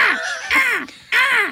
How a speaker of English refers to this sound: Look, there's a nest of crows up there